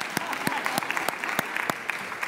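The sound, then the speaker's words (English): A crowd of parents clapping steadily for their children, with sharp individual claps standing out in a fairly regular rhythm over a continuous bed of applause, moderately loud. “And parents, I want you to give your children a round of applause because they have sat here quietly for 30 minutes.”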